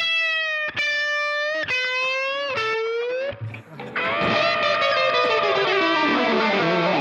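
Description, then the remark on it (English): A Telecaster electric guitar played through distortion effects: a few loud, bending notes struck in quick succession, then a thick chord left ringing and sustaining to the end, with no talking. “If you want to see some pictures of these Telecasters that we've been murdering tonight, then you can head over to Instagram”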